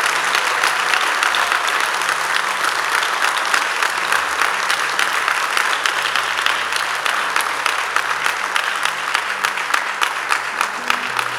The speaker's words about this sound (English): You want to clap, then you clap very well.